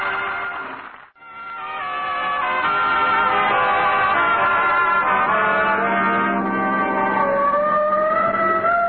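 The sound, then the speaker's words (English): A police car siren wails loudly and steadily, its pitch sliding slowly up and down after a brief cutout near the start, with no voices over it. “Oh, the siren. Now, that's on our car.”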